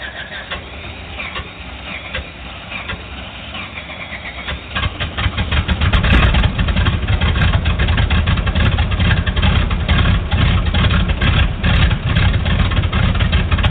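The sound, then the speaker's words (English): REPA 26's engine cranks and catches after clearance to start engines, then settles into a loud, steady idle with a rough, throbbing rumble that continues for several seconds. “And REPA 26, you're clear to start engines.”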